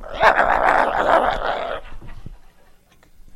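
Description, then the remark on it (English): A person imitates a small Chihuahua-like dog chasing them, growling and yapping in a rapid, snarling burst for under two seconds before trailing off into quiet, with no other talking. “And we went out here a couple, 3 weeks ago there, and one of them little stinking dogs started chasing me like that. It started going.”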